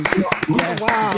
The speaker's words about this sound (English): It's a podcast, we've got a clap.